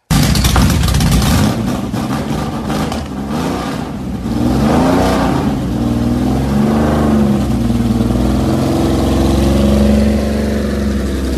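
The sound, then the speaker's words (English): A vintage Porsche 911S engine fires up, revs hard a few times with rising and falling pitch, then settles into a steady, throaty drone as the car drives away. “do you have a actual footage of that thing firing up and Sean taking off in it?”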